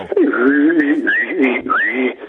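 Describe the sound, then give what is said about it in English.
A person whistles and hums at the same time, a low steady hum under a higher wavering whistle, held continuously for about two seconds, fairly loud with no talking. “Can you whistle and hum at the same time?”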